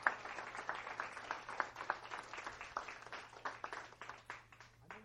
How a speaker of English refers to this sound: So give her a round of applause, guys. There we go.